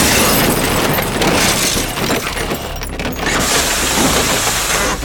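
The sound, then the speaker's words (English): A loud car crash with glass shattering as the vehicle's cab buckles on impact: a dense, continuous burst of crunching and breaking debris that stays intense for about five seconds, with no voices. “The bone-shattering force of the impact is enormous. Reverberating waves ripple through the buckling cab like a gunshot.”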